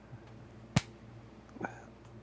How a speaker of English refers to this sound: I high-fived myself. That's called clapping.